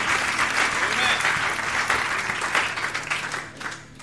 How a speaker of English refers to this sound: I think we need to give Brother Steve a round of applause.